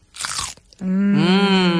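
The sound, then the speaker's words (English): A single crisp, wet crunch of biting into a fresh cucumber, followed by a loud, sustained hummed "mmm" from a voice. “I'm going to need a moment to chew this before I bite into the next cucumber.”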